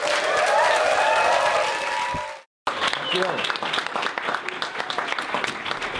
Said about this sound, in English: Thank you. I always say it's a hell of a lot easier when people clap for you on the way in.